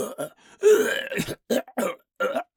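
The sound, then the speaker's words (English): A person imitates the raspy coughing of a wolf ape cryptid said to move through the wilderness of Fresno Valley: a drawn-out throaty hack followed by several short, gruff cough bursts in an irregular rhythm, fairly loud. “This wolf ape, as it's moving through the wilderness of Fresno Valley, they say a lot of times it makes coughing sounds.”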